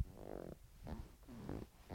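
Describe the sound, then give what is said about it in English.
A leather chair squeaks with a low, fart-like creak, first a sustained buzzy groan and then a few shorter rubbing squeaks, quiet. “My leather just farted.”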